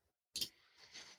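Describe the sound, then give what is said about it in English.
Sharp clicking keystrokes from a mechanical keyboard, a couple of bright clacks with a softer rattle between them, fairly loud with no voices. “Can you hear my typing? Enhance. Mm-hmm. Yeah, I like it. Mechanical keyboard, dude.”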